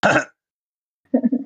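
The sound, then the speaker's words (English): A short, harsh cough bursts out, then after a brief silence comes a low, rumbling throat-clearing sound in a few quick pulses. “Not the cough.”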